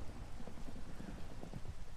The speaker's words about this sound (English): It was thunder.